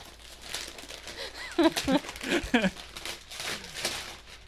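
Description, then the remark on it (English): Christmas wrapping paper around a painting crinkles and rips open in a run of bright, papery bursts as it is unwrapped, with a soft voice murmuring briefly partway through. “Okay, well, first of all, it's wrapped in Christmas paper, which is amazing.”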